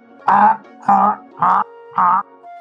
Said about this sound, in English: It's like a swarm of... Even though it was a duck that you squeezed, a swarm of geese just like surround you.